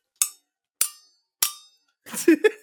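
Three loud, evenly spaced snare drum hits with a clanging, metallic ring and quick decay, followed by a short burst of a voice.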